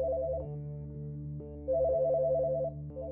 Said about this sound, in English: A phone rang, and I was compelled to answer it. Only guided by ringing, I stepped farther into the darkness.